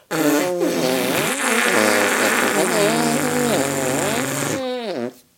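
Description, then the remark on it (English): Two people make sustained arm-fart sounds together as a musical duet, buzzy, wobbling pitches sliding up and down, loud, ending with a rising squeaky flourish. “I would like to invite you to my musical arm fart section.”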